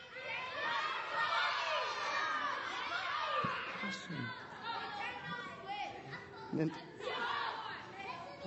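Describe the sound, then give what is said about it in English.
A crowd of children shouting all at once what they want for Christmas after a countdown, a loud, overlapping jumble of excited voices that keeps going for several seconds without a break. “I want you to yell at me what you want for Christmas.”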